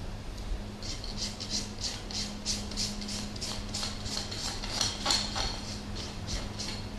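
horse hooves clip-clopping

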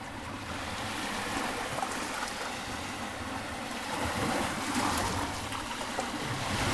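sea waves

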